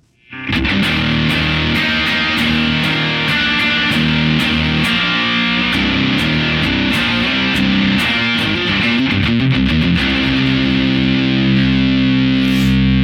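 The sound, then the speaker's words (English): An electric guitar played through a Noble Screamer overdrive pedal with the lows opened up, thick and crunchy, with sustained distorted chords and sharp strummed attacks ringing out loudly and continuously, no voices. “The whole point of this was to see if I could dial in the tones that I can get from the ORDREN, specifically just dialing in tones on the ORDREN and then seeing if I can replicate them in the Noble Screamer.”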